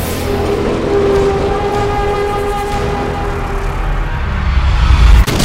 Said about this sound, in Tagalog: Kagaya na lang sa kuha ng CCTV na ito nung paparating na ang tren.